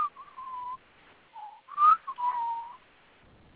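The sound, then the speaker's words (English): A person whistles a short, wavering tune, with a few sustained notes broken by brief pauses and a sharper rising note in the middle, nothing else heard. “What are you trying to whistle?”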